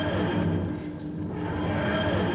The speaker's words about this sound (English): For a moment, there is no sound other than the wheezing roar of the engines and the constant background hum of the ship.